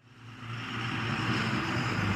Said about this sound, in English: That guy lives in the block and he's got a loud truck.